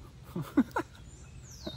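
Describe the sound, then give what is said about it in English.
A bird in a backyard gives a loud, quick run of three short, clear chirps in the first second, then goes quiet against faint background hiss. “There's a bird out here in my backyard.”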